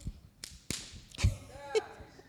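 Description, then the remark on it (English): A whip used as a prop in a demonstration cracks several times in irregular succession, each snap sharp, with faint room murmur and scattered voices in the background between the cracks. “Okay, this is the whip.”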